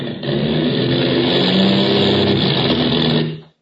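A failing airplane engine with motor trouble, over the Indian Ocean, drones loudly and roughly. It is a dense low rumble with wavering tones, holding steady for about three seconds before quickly dying away into silence.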